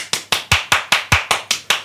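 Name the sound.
hand clapping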